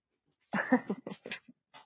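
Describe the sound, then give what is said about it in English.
A dog makes a quick series of breathy, uneven pants mixed with soft whimpering whines, about a second and a half of restless sounds with short pauses between bursts. “Get out of here, dog.”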